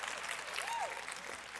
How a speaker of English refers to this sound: Go ahead and clap, because you just should anyway, just to kind of stir yourself up.